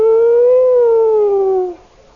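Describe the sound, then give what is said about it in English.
A single sustained vocal siren wail, a voice imitating a police siren of cops coming, rising slightly then sliding downward over about two seconds, loud, ending abruptly with nothing else heard. “Have you ever heard those sirens coming for you?”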